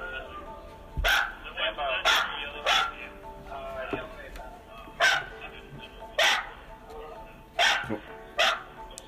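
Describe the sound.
A dog barks in sharp, irregular bursts, about seven loud barks spread over several seconds, with a steady background hum and faint voices underneath.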